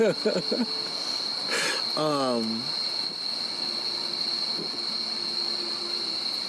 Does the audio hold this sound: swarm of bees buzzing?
yes